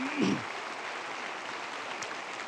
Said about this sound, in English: If you'd just give them a round of applause.